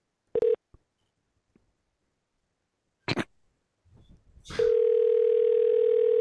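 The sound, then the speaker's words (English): A short tone and faint clicks lead into a few handset clatters, then a steady telephone dial tone hums continuously to the end, as a call is placed to a Guitar Center store. No one speaks. “I'm just going to call this guitar center and just tell them that we have … on the phone.”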